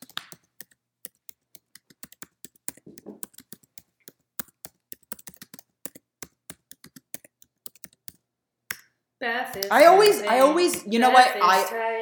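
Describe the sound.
Rapid, irregular clicks of typing on a computer keyboard fill the first nine seconds, crisp, before a voice starts talking over the last few seconds.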